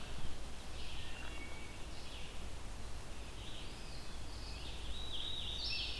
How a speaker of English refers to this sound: Too many leaves, too big of a forest. It's a loud bird, so it may not be all that close to me. Very songful, though. This is a... it's been nonstop since I got here.